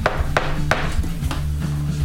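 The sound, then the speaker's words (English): Four sharp knocks on a wooden door, the first three in a quick, even rhythm and a fourth after a short pause, over a low steady hum. No one speaks. “You knock on the door.”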